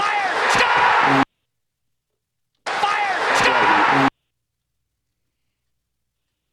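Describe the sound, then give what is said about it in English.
A dense, loud roar of a Tampa Bay Lightning hockey arena crowd, not a roar for a Lightning score, comes in two abrupt bursts of about a second each, split by silence, with shouting voices cutting through the noise. “That's another crowd roar.”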